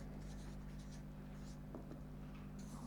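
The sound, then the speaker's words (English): Soft scratching of a pen or pencil writing a name in the middle of a sheet of paper in short strokes, starting a map of family members, quiet, with a steady low hum in the background and no talking. “So starting with family members, I'm going to put my name in the middle.”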